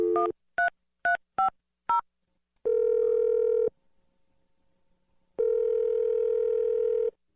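A telephone call placed by the morning radio show Brooke and Jeffrey in the Morning: a rapid series of five short dialing tones, followed by two long, steady ringback tones separated by a pause of near silence. No voices are present.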